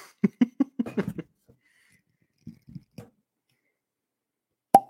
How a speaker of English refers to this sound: Ooh, cork pop. Man.